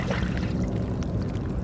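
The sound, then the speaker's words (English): On a windless January day, calm seawater gurgles and sloshes steadily through crevices among large rocks covered in barnacles and seaweed, a continuous wash with soft trickling and tiny clicking detail and no voices. “The water moves calmly through crevices.”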